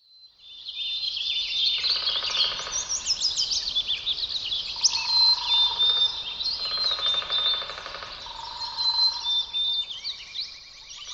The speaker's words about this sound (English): Within the stories told by the sounds of bird species are further riches. Every individual bird has its own acoustic signature. Listen and meet your locals.